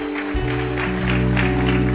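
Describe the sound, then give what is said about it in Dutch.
Audience applause for a woman who is about to be baptized, a dense steady patter of many hands clapping that fills the whole two seconds at an even volume, with a low sustained hum running underneath. “Can Zij we give her a great big hand? Kunnen we haar een applaus geven?”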